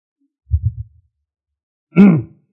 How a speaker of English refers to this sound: Okay, clearing your throat.